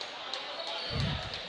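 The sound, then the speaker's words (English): A basketball bounces in a steady, quick dribble as Exeter leads the offense in a game against Elizabethtown, each thud fairly faint beneath the constant roar of the crowd, with one heavier low thump midway. “Kevin Sienz is going to lead the offense this time. He's got the dribble.”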